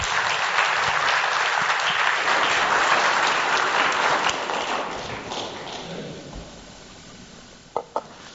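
An audience breaks into dense, steady applause that holds strong for several seconds, then gradually thins and fades, with a couple of sharp knocks near the end.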